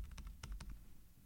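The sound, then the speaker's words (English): Crisp typing on a miked-up computer keyboard with a quick irregular run of key clicks, each tap sharp and percussive over a low thumping undertone, no voices present. “Oh, he's gonna really mic up the keyboard.”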